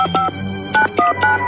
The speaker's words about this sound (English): We see Alex cup his ear and listen closely to the touch tones as the owner dialed the phone number so he can remember the tones, which is very impressive.